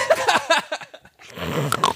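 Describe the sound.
A voice mimics loud snoring, imitating someone in deep REM sleep: a run of short, throaty, rhythmic snorts, a brief pause, then a longer raspy, rattling snore.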